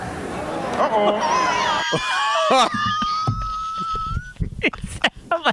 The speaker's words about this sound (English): Did you hear the growl? Did you hear the growl? Did you hear the growl before he said uh-oh? Listen to the growl one more time.